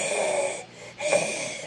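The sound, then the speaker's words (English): A person imitates an animal's hiss with two breathy, raspy hisses, one after another with a brief pause between them, fairly loud, with no talking. “He's looking up at me with that eye, and they hiss.”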